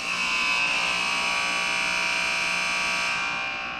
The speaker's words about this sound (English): All right, that's the horn.